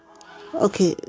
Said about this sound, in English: Those are the ducks next door.